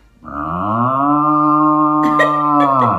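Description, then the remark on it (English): A person does a long, loud cow moo impression, one sustained low lowing call held for nearly three seconds with a slight rise at the end and a few breathy clicks near its close. “that's your cow impression.”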